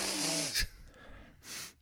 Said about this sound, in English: I have heard you breathing from time to time.